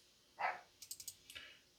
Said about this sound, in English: My little dog, my little Cavachon puppy is upstairs barking. You'll have to pardon me if you hear that. Again, the house right outside this wall is being renovated. They aren't doing any sawing or anything, but my dogs still know they're out there.